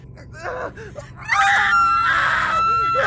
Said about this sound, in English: started screaming, almost in unison and about in the same tune.